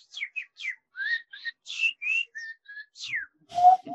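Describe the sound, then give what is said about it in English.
A person whistles an imitation of a bird call: a quick string of about a dozen short, high chirps and downward-sliding notes, ending on a louder, lower held tone, with no talking. “I mean, I like talking to birds.”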